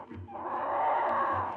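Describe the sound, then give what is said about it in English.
A chicken in a courtyard enclosure gives a drawn-out, raspy vocal call lasting just over a second, moderately loud, with faint low rumbles underneath and no talking. “he looks like a pheasant or something like that.”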